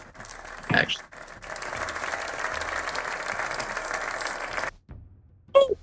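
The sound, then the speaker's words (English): An audience breaks into steady applause for Nicolas Cage that holds for a few seconds and then stops abruptly, with a short vocal outburst before it and another brief voice right after. “Round of applause for Mr.”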